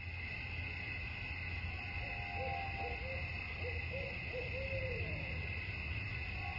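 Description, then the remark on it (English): An old hoot owl hoots in a soft, low series of repeated calls over a steady background of insect-like buzzing and low rumble, with no voices, in the wee morning hours of a cold December night during deer season at a camp on the Briscoe Ranch in northern Jack County, Texas. “And you even hear an old hoot owl chiming into the wee morning hours that led to another successful and wonderful deer hunt on the Briscoe Ranch.”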